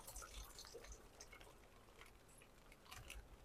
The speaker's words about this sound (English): I'm walking over to it now. And I simply take my watering can and I gently immerse it in the water to fill it up.